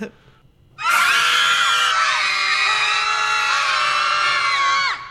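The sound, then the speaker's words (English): A loud, sustained burst of many voices screaming together in a film scene, starting abruptly after a brief quiet moment and holding at full intensity for about four seconds before cutting off. “That is a nice collection of screaming. That is. Wow, it's a group scream.”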